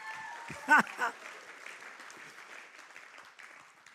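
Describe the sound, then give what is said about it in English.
An audience claps in a steady, scattered patter that keeps going to the end, after a speaker urges them to clap more excitedly. Near the start a voice is heard and two louder, sharper bursts stand out above the applause. “Oh, come on, we got to clap more excited than that.”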